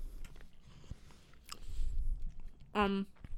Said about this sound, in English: Sorry if I'm chewing. Spice is kicking in.